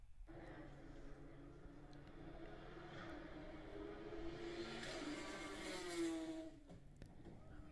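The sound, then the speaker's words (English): A GT2 race car engine screams as it accelerates through the gears on a cold day, with sharp pops and crackles at each upshift, loud, the revs climbing before dropping off at the end. “You know it's crazy when it's popping on the upshifts? You can hear it in this video.”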